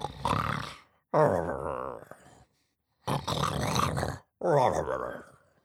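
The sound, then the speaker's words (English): A voice imitates Gnasher the dog snoring softly in class: four rumbling, growly breaths with short pauses between them, moderately loud, with no other sounds around them. “Well, silent apart from the soft snoring sound Gnasher often made in class.”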